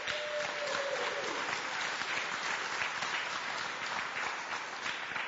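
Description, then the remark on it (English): A crowd applauds steadily for all the mothers on Mother's Day during a service at Garden City, a dense, even patter of many hands clapping at a constant level for several seconds with no speech over it. “Let's give a round of applause to all the mothers.”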